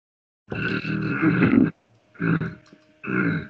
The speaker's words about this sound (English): I'm doing a retronasal. It sounds like I'm clearing my throat, but I'm trying to get the essence, yeah, up through there, the back of my throat and back here.